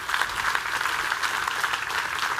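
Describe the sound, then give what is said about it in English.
An audience claps steadily, a dense wash of many hands at an even level with no pauses, and no talking over it. “And yeah, give them, yeah, I hear some clapping, that's good.”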